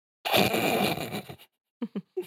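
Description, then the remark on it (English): A zipper is pulled in one steady, raspy stretch lasting about a second, followed by a pause and then a few brief, soft sounds. “The zipper is heard being unzipped.”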